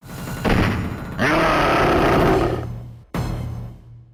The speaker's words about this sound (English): But the roar is like really low quality and the hit is not.